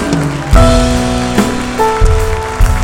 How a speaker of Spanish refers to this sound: Iglesia, ¿cuánto dan un aplauso al Rey de Reyes?